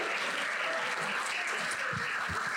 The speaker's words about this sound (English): Round of applause